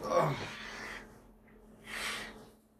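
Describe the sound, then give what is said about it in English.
Someone blows their nose: a loud, rough burst of air through the nostrils, a short pause, then a second shorter honk, with no talking. “I'm gonna blow my nose real quick because it's just.”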